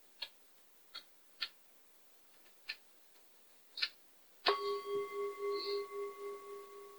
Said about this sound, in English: And then we'll begin when Catherine rings the bell.